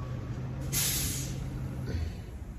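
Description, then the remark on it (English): A truck's hydraulic air brakes let out a sharp burst of hiss about a second in, over a steady low engine rumble, then a softer hiss trails off near the end, while the truck is being directed. “Your stupid hydraulic brakes are ruining it.”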